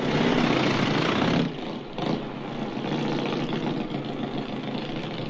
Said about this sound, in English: The air shatters as engines answer an unseen signal. Our friendly motorcyclists are ready for the road.